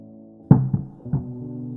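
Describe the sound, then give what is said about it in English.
Three heavy, muffled knocks, irregularly spaced, thud through from the floor above, set against a steady low hum that continues underneath. “The knocking again. Longer, more pronounced, like a big dog running across the hallway above.”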